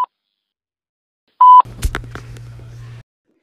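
A short electronic tone beeps once near the start, then a sustained answering-machine beep sounds, followed by clicks and a low hum as a line picks up, with no talking.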